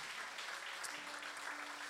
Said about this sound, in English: Can we just clap our hands and thank God for what he's doing at this church and how special it is?